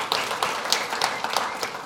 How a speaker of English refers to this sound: You guys didn't get to see it, but the prayer team was in here praying over every seat that you are sitting in here this morning. Yeah, we can clap for them. It was awesome.